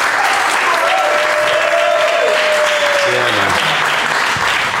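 An audience applauds loudly and steadily for about five seconds, dense clapping filling the whole clip, with a drawn-out cheer riding over it partway through.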